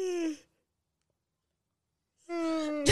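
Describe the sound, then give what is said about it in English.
A person yawns: a drawn-out, breathy vocal moan that fades into about two seconds of silence, then another long, loud yawning groan begins. “when you stop yawning.”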